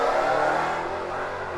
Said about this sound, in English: My God, it's the same car every day. Yeah, it's the same like, tiny dick Camaro.